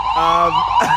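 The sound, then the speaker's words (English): A loud ambulance siren wails in a city street, holding a strong steady tone before its pitch sweeps and shifts near the end of the brief moment. “this ambulance is definitely messing up the ambiance of the video, but c'est la vie in the city.”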